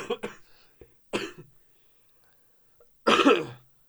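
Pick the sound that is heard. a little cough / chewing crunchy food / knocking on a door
a little cough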